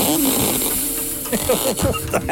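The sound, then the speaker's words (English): Someone strains to blow up a balloon: loud, breathy puffs of air mixed with rubbery, sputtering squeaks and low, rasping flutters that come in uneven bursts over a couple of seconds. “That better be the balloon making that noise.”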